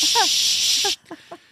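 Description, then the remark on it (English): A voice imitates a Febreze aerosol air freshener spray being sprayed a lot, with a loud, steady 'shh' hiss lasting about a second, overlapping other speech, then cutting off abruptly as brief talking continues. “Because whoever took that Febreze was like, shh. Just sprayed a lot of it.”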